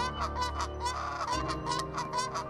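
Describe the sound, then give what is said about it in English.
Frightened geese nearby cackle in an agitated flurry, many harsh honking calls overlapping in quick succession, loud, with a steady noisy rumble underneath and no talking. “It's the frightened cackling of geese nearby.”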